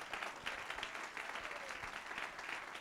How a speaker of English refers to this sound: Somebody clap your hands all over the house.